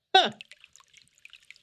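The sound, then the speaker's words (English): A short vocal exclamation, then soft, scattered splashes and drips as hands are rinsed in river water, quiet, with irregular little trickles. “Quick wash in the river.”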